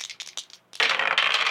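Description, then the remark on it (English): Three dice rattle in a few quick, bright clicks, then tumble across a hard table in a loud, sustained clatter that continues to the end, with no voices; they land on a 6, a 3 and a 6. “Let me hear them bones. Let's go. All right. Rolling.”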